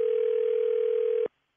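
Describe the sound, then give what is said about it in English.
A steady, unbroken telephone dial tone hums at a single mid pitch for just over a second, then cuts off abruptly into silence as a phone call is placed to ask for a reference. No voices are present. “I'm calling for a reference.”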